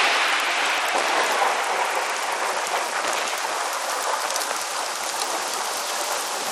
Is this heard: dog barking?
no